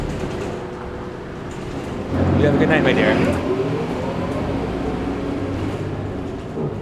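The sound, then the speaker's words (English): A steady low engine rumble fills the cabin of a moving city bus, with a swell of road noise partway through, while a person speaks briefly over the drone. “The upshot of my bus field trip was a reminder about not thinking I know what to expect.”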